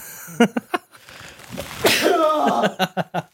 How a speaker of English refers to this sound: Oh, God, I'm going to sneeze.